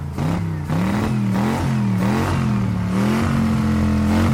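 A Mitsubishi car engine revs hard and accelerates, its pitch climbing and dropping through several gear changes. The sound is loud and continuous, with no voices.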